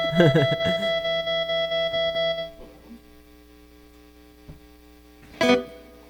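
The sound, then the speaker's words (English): A brief vocal sound drenched in heavy reverb, smearing into a dense, ringing wash that hangs for about two seconds before fading. A short, sharp burst follows near the end. “Reverb, a little wet. Oh, wetting it. Is it there? Hello. Oh, that's too much.”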